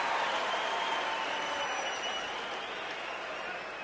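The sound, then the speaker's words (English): A large arena crowd at a Golden State Warriors NBA Finals game cheers and applauds steadily as Matt Barnes comes onto the floor and Draymond sits down, a dense roar of clapping and voices that holds loud throughout and eases off only slightly toward the end. “And listen to the response he will get. Draymond sitting down, both getting a cheer.”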